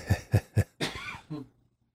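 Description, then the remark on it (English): A sneeze fit in a recording studio: three quick, sharp bursts of breath followed by a longer, noisy explosive sneeze and a short trailing burst, fairly loud with no talking. “Very special indeed. Well, bless you.”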